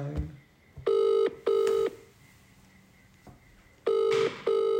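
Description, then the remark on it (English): A phone call to a man's cousin rings out with a steady double-burst ringback tone, two paired rings separated by a quiet pause, loud over faint background noise, with no one picking up. “He won't answer my phone”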